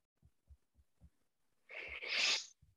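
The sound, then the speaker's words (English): A single loud sneeze heard over a phone call bursts out as a sharp hissing blast, preceded by a few soft, low thumping breaths and followed by quiet stillness. “Did you just sneeze or something?”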